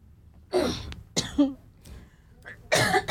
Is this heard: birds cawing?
no